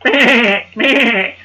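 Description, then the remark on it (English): A person imitates a sheep with two loud, wavering bleats in quick succession, each lasting about half a second, with no other talking. “For some reason, bawled like a sheep.”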